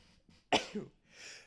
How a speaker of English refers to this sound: excuse me, I sneezed into a microphone.